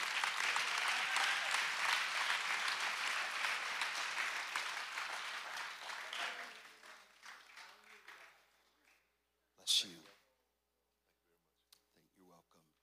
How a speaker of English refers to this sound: Any pastors? Okay, could you come? I want to give you this book. Come on down. Can we give this gentleman a round of applause?